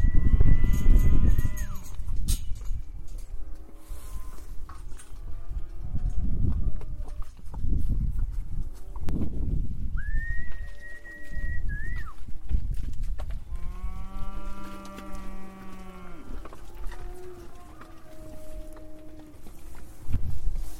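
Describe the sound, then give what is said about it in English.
A herd of about 55 cows at Century Harvest Farm lowing repeatedly as they move out of their enclosure into fresh green grass around 1 o'clock in the afternoon, several long, overlapping moos over a steady shuffle of hooves, loud, with no talking. “That was the sound of about 55 cows down at Century Harvest Farm moving out of their enclosure into fresh, green grass about 1 o'clock in the afternoon.”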